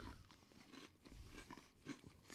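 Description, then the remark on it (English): Crisp crunching of mini Oreo-style knockoff cookies being chewed, a steady run of crackly bites and mastication over a couple of seconds, fairly quiet with no talking. “I'm crunching those cookies left and right.”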